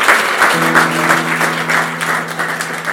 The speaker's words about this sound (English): God bless you, brother. What a round of applause for you.